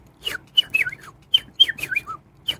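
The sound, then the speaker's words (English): A person's imitated eagle call: a string of high, thin cackling whistles in quick bursts, each sliding downward, repeated several times over a couple of seconds, clear with no talking. “High-pitched cackling and whistling. It doesn't sound like an eagle should.”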